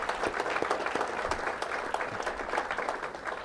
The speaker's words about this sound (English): And once again, let's give KPRZ just a round of applause. Thank you so much.